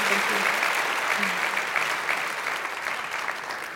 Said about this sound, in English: Thank you so much for being here tonight. Please, please, please give them a huge round of applause.